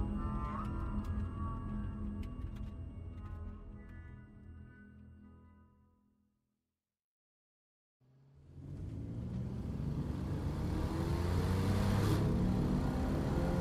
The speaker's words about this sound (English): we left the bridge as Ebony revved the Corvette up